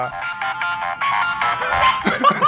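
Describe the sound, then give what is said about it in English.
A phone timer alarm rings with a repeating melodic tone pattern, bright and steady in short pulsing bursts, continuing loudly with some voices and chatter joining toward the end. “Oh, shit, I can't turn it off. Wait. Your phone's just going to do that forever now.”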